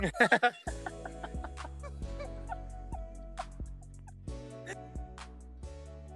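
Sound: people imitating chicken clucking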